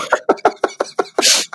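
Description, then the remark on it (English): A rapid run of short coughing bursts from someone who has choked on tea, ending in a harsh, breathy sputter and one last small cough. “I drank some tea and I choked on it. So I tried to turn off the microphone for a second so I didn't cough.”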